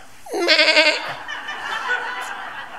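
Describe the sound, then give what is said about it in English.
A sheep gives one loud bleat, a quavering, wavering cry lasting under a second, then only a low hiss of background noise remains. “Soak it in, sheep. That's us.”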